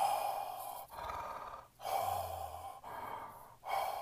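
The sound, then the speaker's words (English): A phone ringtone of slow, heavy mechanical breathing, a hissing inhale then exhale repeated about four times in a steady rhythm, fairly loud with a low hum beneath, the respirator breath of Darth Vader. “But in this particular, I had Darth Vader breathing.”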